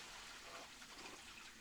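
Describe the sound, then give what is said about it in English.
A steady, hissing rush of water flows continuously through plumbing pipes that carry water from bathrooms, fairly quiet and unbroken with no voices. “People go to the bathroom here, and these pipes have the water.”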